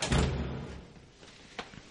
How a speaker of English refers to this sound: Here we go. Oh, no, the door's gonna shut.